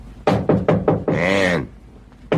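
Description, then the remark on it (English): In a drama scene, the character Logan, played by Vincent Price, pounds his fist heavily on the door of a woman's room four times in a quick, even rhythm, followed by a loud, drawn-out vocal call, then one more thud at the end. “Logan, played by Vincent Price, opens the scene as he pounds on the door of your room.”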